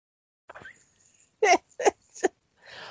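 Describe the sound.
A person performs exaggerated, theatrical telenovela-style gasps in Spanish, done in disbelief: a soft breathy intake, then three sharp, loud, voiced gasping bursts in quick succession, trailing into a breathy exhale.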